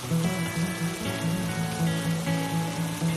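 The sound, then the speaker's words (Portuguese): Steady rain falls with a continuous, even hiss, accompanied by a soft, sustained low musical drone with faint tonal layers. No one speaks. “Meditação para trazer chuva”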